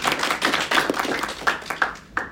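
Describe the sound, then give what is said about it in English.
Brief, scattered applause from a small audience welcoming Professor Faisal Bhabha: a patter of overlapping hand claps at moderate volume lasting a couple of seconds, with no one speaking. “Let's give it up for Professor Faisal Bhabha.”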